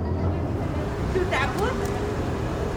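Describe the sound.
Steady street traffic ambience at a taco truck by train tracks in downtown Modesto, in the San Joaquin Valley, with a constant low engine rumble and a broad wash of noise, plus faint indistinct voices, holding at an even, moderately loud level throughout.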